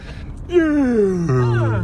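A person yawns up close, a drawn-out voiced yawn whose pitch slides steadily downward over about a second, heard on its own without talking.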